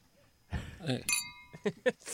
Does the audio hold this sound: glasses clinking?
yes